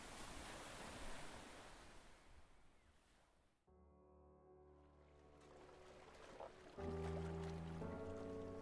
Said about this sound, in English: In December, the North Sea was as thick and grey as London's smog. Great white rollers broke over the empty seafront. Storms glared from the horizon. It was not the Scarborough Kate remembered.